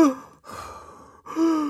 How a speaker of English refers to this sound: So if I ask you now to take some deep breaths